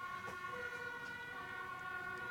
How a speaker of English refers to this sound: Speaking of soundscapes, I'm listening to the quite different siren that you have over there. Yeah, I live near a main road, so it's funny.